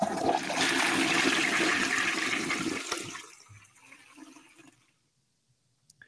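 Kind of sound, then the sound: sound effect, toilet flushing sound effect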